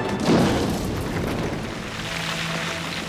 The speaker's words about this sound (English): Let's listen to the aftermath of this ship crashing here on Florum.